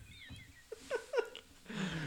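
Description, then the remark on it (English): A person imitates a cat's meow: two short, rising mewing calls in quick succession, then a soft breathy rush of sound. “You're like, meow. Animal noise.”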